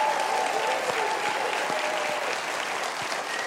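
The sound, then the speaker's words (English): Steady, dense television studio audience applause for a band fills the whole stretch, a bright wash of many hands clapping at a constant loud level with no voices on top. “A big hand of applause for ….”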